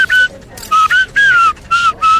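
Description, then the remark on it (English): A person whistles a series of five short, bright chirps in a choppy rhythm, imitating a bird's call as the bird witness's testimony read back by a court reporter in a comedic courtroom scene. Each note is loud and slightly sliding in pitch, with no talking. “Your Honor, would the court reporter please read back the bird witness's testimony?”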